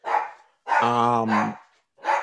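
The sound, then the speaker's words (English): A dog barks: a short bark, then a longer, drawn-out whining bark, and another bark starting at the end, fairly loud with brief gaps between. “Well, this is a big development that Matt has a dog.”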